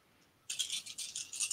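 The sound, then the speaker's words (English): Dice rattle sharply in a rapid, uneven burst of clicks that starts abruptly after a quiet moment and keeps clattering to the end, bright and fairly loud, with no voices. “I haven't rolled that many dice on that, but I haven't rolled this.”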